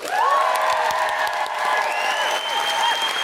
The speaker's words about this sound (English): can we have a really, really big round of applause for our fantastic co-host, Jen Brister?